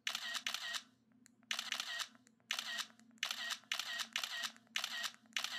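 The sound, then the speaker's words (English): An iPhone 4S camera's synthetic shutter sound fires ten times in under 6 seconds as photos are taken as fast as possible to test shutter speed, each burst bright and crisp, with short gaps between clicks and a faint low hum underneath. “Well, let me take some pics as fast as I can with my 4S.”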